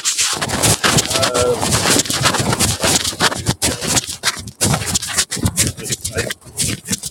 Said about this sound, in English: You're kind of getting sounds of like it sounds like something shuffling, not hearing you. Oh, yeah, that would be a shopping cart.